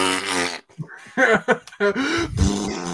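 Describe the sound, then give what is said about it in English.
A loud, drawn-out fart with a buzzy, wavering pitch, breaking into several sputtering bursts and ending in a low rumble, heard on its own without talking. “Just a big old fart.”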